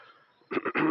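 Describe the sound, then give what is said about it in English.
Someone clears their throat in the morning just after getting up: three quick, rough, throaty bursts in a row after a brief quiet moment, with no talking. “Just clearing my throat, just getting up this morning.”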